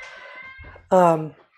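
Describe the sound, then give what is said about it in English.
A cat being let in gives a single loud meow lasting about a third of a second, with softer, muffled voice-like sounds just before it. “I'm going to ask if our producer, who is letting a cat in at the moment, can maybe get us some water while he's up.”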